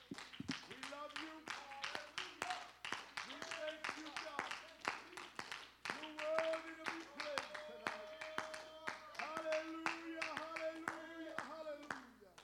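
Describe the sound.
An audience gives a hand clap of praise to God at an evening service for about twelve seconds, a steady, crisp patter of many hands, while raised voices call out and shout over the clapping throughout.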